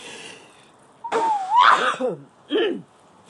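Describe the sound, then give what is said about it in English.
A loud sneeze from allergies flared up by dried leaves on the ground: a rising wheezy intake of breath bursts into a sharp explosive blast, followed a moment later by a shorter, softer exhale or sniff. No talking. “Never go outside and never sneeze. Or manage it. Excuse me.”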